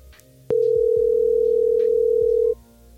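A phone call rings out unanswered with one long, steady electronic tone lasting about two seconds, loud and even in pitch, then cuts off, leaving faint background hum.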